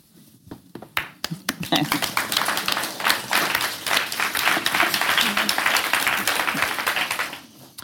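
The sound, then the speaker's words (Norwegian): An audience bursts into applause after a reading, a dense patter of many hands clapping that builds within a second, holds steadily for several seconds, then tapers off quickly. “Jeg kan godt lide, man klapper efter oplæsning.”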